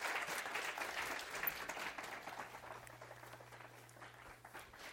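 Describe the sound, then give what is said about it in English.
A church crowd applauds steadily in appreciation of a departing church staff member, a dense wash of many hands clapping at once that stays fairly loud for the whole stretch, then thins slightly toward the end, with a faint low hum underneath. “So you clap your hands. While you're clapping, I got something for you.”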